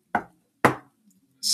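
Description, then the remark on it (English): Two dull, solid knocks on a wooden desk, used to imitate a door knocker, about half a second apart, each with a short decay, followed by a brief soft hiss. “desk isn't good for an ominous knocker.”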